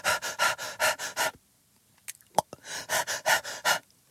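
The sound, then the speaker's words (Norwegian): A dog pants heavily in quick, rhythmic bursts, pauses for about a second with a few small swallowing and licking sounds, then starts panting hard again. “Det er funnet når de puster så jævlig, og så er det sånn 2 sekunders pause hvor de bare svelger spytt, og så bare på igjen.”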